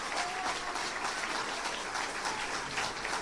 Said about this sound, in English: Clapping, standing ovation.